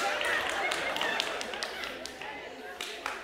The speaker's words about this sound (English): Can I applaud to that? Okay.